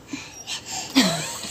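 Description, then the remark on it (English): A single sneeze: a quick breathy intake, then a sharp, hissy burst that drops into a short voiced tail, moderately loud, with no talking around it. “Bless you.”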